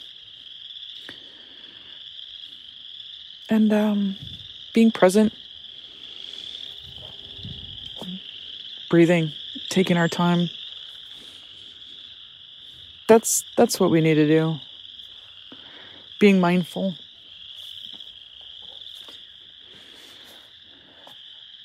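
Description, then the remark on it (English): A dense chorus of spring peeper frogs in the woods, a continuous high-pitched peeping that runs steadily throughout while a woman walking in the woods speaks calmly in short phrases over it. “I'm out here walking in the woods, blowing off some steam and listening to the peeps and enjoying their hopeful chatter.”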